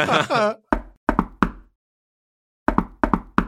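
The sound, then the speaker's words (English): A brief voice, then sharp knocking on a door in two rhythmic bursts: a few raps, a pause of about a second, then a quicker run of five knocks. “I even think that the knock on the door”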